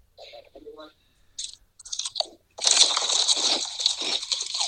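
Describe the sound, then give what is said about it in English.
Loud crunching of Hal's New York sweet chili kettle potato chips: a few sharp separate bites, then a long stretch of dense, continuous crunchy chewing. A brief murmur of voice comes near the start. “Oh, I hear the crunching.”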